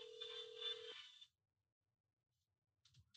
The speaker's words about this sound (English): Bro, hurry up, answer the phone real quick, bro, before they even.